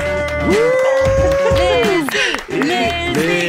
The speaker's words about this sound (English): We never chanted, ever. This is the first time we chanted for a guest.